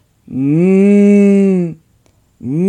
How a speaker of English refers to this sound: Bukutla, Bukutla, if you're alive on this earth, please moo. He heard it.